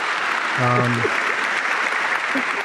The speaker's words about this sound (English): I mean, I'm gonna give him an applause here too.